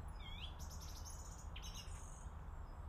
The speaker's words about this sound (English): So I can see blue tits and great tits, and there's a blackbird, I think, singing up there somewhere.